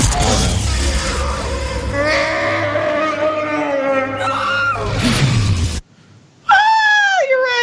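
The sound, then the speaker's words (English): A loud, drawn-out roar from Chewie with a wailing, bleat-like tone holds for several seconds, then after a brief silence a second, shorter howl rises and dips in pitch. “Really quick, when you were talking earlier, I wanted to cue this up just because it's a mighty roar and it's worth listening to.”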